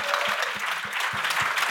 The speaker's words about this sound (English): Yes, let's give that a round of applause.